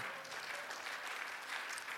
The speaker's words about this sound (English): Let's clap our hands and praise to the Lord.